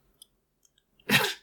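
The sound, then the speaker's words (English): A single sharp sneeze bursts out after a few faint clicks and a brief intake, loud and breathy for a split second, with no talking around it. “Did you wink at me with your sneeze eye?”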